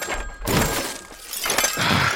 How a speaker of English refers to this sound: And I just start smashing the phone.